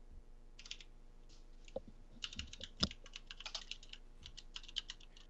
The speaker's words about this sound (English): All I hear is typing.